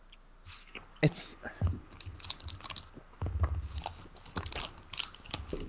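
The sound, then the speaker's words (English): Crunching and chewing of food, with sharp bites followed by a steady, irregular run of crunches and smacks, fairly loud and intimate throughout. “Oh, you're eating.”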